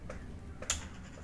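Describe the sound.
Soft ticks repeat at a steady, clock-like pace over a low background hum, with one sharper, brighter click standing out midway. No one speaks.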